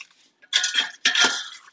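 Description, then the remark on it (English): Two bursts of scraping and clattering in a pan as a wooden spoon flips and rearranges pieces of chicken so they cook evenly, with a faint sizzle underneath and no talking. “I'm using just a wooden spoon. I'm just kind of flipping the chicken over, just rearranging it a little bit.”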